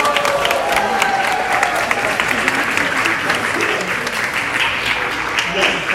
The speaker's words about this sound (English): So can we please give a nice big round of applause for the incredible crew?